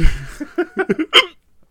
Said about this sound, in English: Sorry, I'm getting the hiccups.